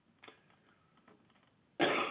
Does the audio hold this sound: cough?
yes